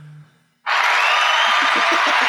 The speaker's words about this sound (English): Thank you. Why do you always give him a clap after all of his interviews? Because he's on fire.